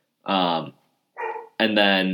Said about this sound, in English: I might have to get my dog in a minute as she barks away.